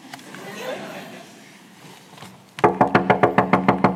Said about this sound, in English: Knocks again.